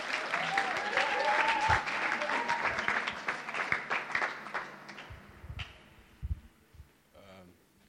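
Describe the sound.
A church audience breaks into dense, steady applause for the next speaker, with scattered cheers and voices mixed in, then the clapping thins out to a few last claps before fading away.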